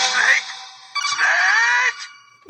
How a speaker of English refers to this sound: So the snake death sound clip with Colonel Campbell.